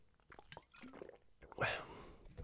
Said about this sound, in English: Can I ask you guys a real quick question? Let me take a sip here.